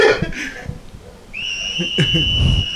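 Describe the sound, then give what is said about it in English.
A woman whistles: a loud, steady, high-pitched whistle starts partway through and holds unbroken to the end, following some brief muffled voice sounds, with low rumbling noise underneath. “Stop whistling, lady.”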